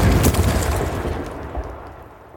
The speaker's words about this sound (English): I inserted the explosion sound effect to incorporate improvement number 3. Make sure your show contains surprises for your audience.